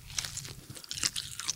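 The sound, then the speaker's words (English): Someone chews and crunches on crisp bush tucker, with several sharp, crackly bites at an irregular pace over a low, steady hum. No one speaks. “Next time on Bird's Eye View, we'll be talking Bush Tucker in prison. How does that taste”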